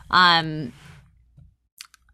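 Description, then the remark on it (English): A short voiced sound comes first, then after a pause a quick little cluster of hard, light clicks as a die is handled during a dice game, like dice rattling briefly in a hand. “Wait, I said I was going to retire this dice. This die is going away.”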